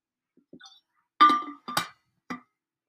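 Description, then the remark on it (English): A glass clinks a few times alongside short, breathy slurping and swallowing sounds as someone takes a sip of water, with no talking, just a handful of brief sounds over a few seconds. “Let me just take a sip of water, guys.”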